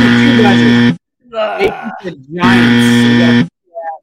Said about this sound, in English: give me a buzzer.